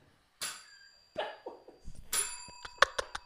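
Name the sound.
bell ringing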